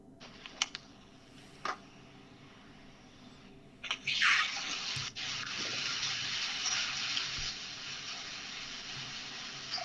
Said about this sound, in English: Jesus Christ, this hail's getting ridiculous. Put the phone up to it.